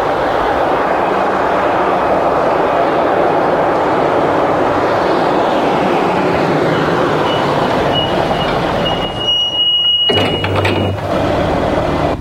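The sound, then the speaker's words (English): A loud, steady roar of aircraft engines fills Miami Airport, with a thin high whine rising briefly near the end as the rumble shifts. “Miami Airport is quite a shock. From the airport, they drive to the White Tower Hotel on Miami Beach.”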